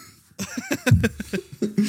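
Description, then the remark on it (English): A quick run of sharp sneezes, several bursts in a row with short gaps between them, loud and breathy. “I'm just sneezing.”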